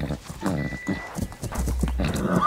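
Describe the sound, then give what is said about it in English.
Horse hooves clop along while a horse whinnies, with people talking over the animal sounds at a steady, moderate loudness. “There's an interesting connection to explore here, and it has to do with horses.”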